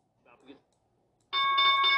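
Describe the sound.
A loud bell suddenly starts ringing and holds a steady, bright, sustained clang for the last stretch, right after a brief murmur of a voice.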